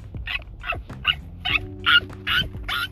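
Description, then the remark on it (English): A person imitates a monkey with a quick run of about seven sharp, high-pitched hooting yelps, evenly spaced, with no talking around them. “So I just like sitting with my friends, and I've been pretending to be a monkey. I make a pretty good monkey sound.”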